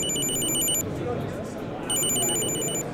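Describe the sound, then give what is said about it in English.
A Chipolo Bluetooth key finder attached to a set of keys, rung from its phone app, sounds at 90 decibels in two shrill, high-pitched electronic bursts separated by a short pause, loud over a steady murmur of background chatter. “So if you are looking for anything you attach your Chipolo to, so in our case keys right here, you can ring your keys from the app.”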